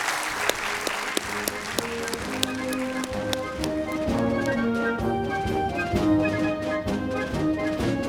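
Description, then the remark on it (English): A burst of steady crowd clapping, the audience applauding the scholars at a town hall on the Constitution and impeachment, fills the opening seconds, then fades as a melodic music bed with sustained tones and light percussive taps takes over. “For illuminating our understanding, you can hiss according to the First Amendment, but I know that all of you more enthusiastically will want to applaud our scholars for illuminating the facts and law of the Constitution and impeachment.”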